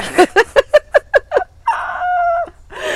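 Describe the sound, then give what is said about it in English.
Chihuahuas yap in a quick, even run of about seven sharp, high-pitched barks, then a single drawn-out whining cry follows before trailing off into a brief rustle. “We're going to bark. Bark, bark, bark. Chihuahuas.”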